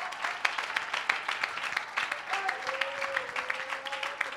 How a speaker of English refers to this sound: Oh, somebody give the Lord a good hand clap of praise.